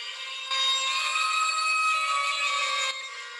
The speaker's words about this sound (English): Ooh, the bagpipes.